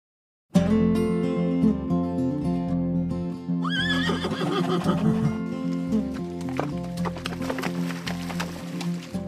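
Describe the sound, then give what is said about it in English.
A horse gives a loud, wavering neigh over a steady musical backdrop, followed by a run of sharp hoof clip-clops. “Riding horses is a fun date. Horses are majestic, and riding them is fun, especially on trails you've never been on before.”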